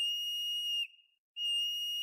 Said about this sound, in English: So, groundhogs are pretty famous for predicting the end of winter, but did you know that not everyone calls them groundhogs? Some people call them whistle pigs because they make a high-pitched sound.